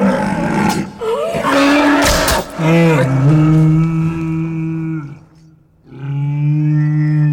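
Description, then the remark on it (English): A deep, mournful creature bellow, low and drawn out like a groaning walrus, sustained in long wavering calls with a brief pause before a final moan, loud with no talking; a cave troll's vocalization made as a very sad, mortally wounded walrus sound. “And right at that one moment, we changed the cave troll's vocalizations completely from anything aggressive or tired to a very sad, mortally wounded walrus sound.”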